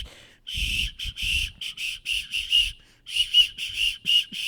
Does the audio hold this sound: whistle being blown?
yes